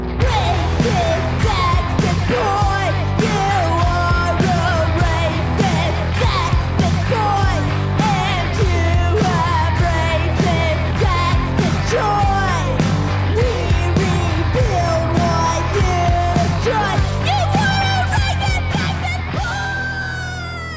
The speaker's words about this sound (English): And that experience turned into one of the most satisfying punk screams I've heard in a long while.